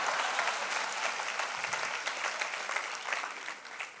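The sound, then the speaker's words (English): A crowd claps for themselves steadily for about four seconds, a dense, even patter of many hands with no pauses or swells, sustained at a consistent loudness throughout. “Clap for yourselves.”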